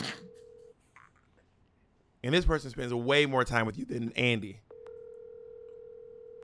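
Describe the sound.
A steady electronic ringing tone of an outgoing phone call sounds briefly, breaks off while a person speaks over a quiet line, then resumes and holds to the end, clear.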